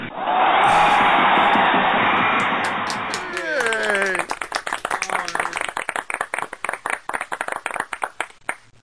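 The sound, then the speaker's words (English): A dense wash of crowd-like noise gives way to a brief voice, then a long run of sharp, loud recorded hand claps in a quick, slightly uneven rhythm until the end. “Clap. You recorded.”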